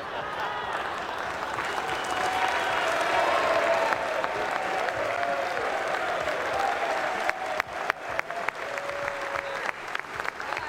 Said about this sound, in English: Why are we applauding this?